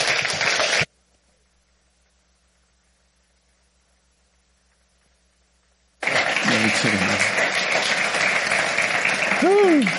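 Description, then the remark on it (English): A Cowboy Church audience bursts into applause to welcome guests from Israel, falls silent for several seconds, then claps again in a dense, steady wash with voices and a few rising whoops mixed in. “And, man, would you all give them a Cowboy Church hand clap for welcome.”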